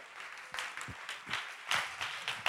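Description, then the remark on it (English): A crowd at a church revival service claps in praise, many hands blending into a dense, sustained patter with a few sharper bursts, moderately loud and filling the space without any voices on top. “Clap your hands and give him praise.”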